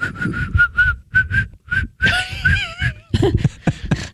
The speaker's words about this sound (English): Hold on. Why can't I whistle?